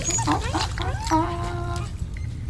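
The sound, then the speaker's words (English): A dog whimpers and whines in a few high, wavering cries, ending in one longer drawn-out whine over a constant low background hum. “Hey, tell you the truth, brother, between you and me, that thing with the dog is coming off a little fruity.”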